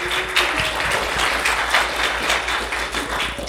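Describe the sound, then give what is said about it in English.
A crowd claps steadily in a dense, sustained wash of applause lasting several seconds, fairly loud, with no voices standing out above it. “Let's hear it first for Monster Kid Radio, please. Big round of applause.”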